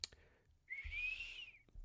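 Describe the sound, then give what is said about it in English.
A person whistles one sustained, slightly rising note lasting about a second, loud, with nothing else around it but faint background noise. “And I'm like, damn, is somebody whistling for us?”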